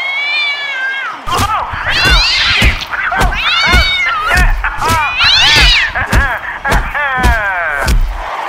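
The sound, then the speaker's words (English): A female cat named Teams meows repeatedly, a string of loud, drawn-out, wavering cries, with dull thumps and knocks sounding between them. “Everybody, Teams the cat. Say hi, Teams.”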